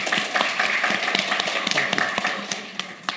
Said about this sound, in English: A spontaneous round of applause you just got there.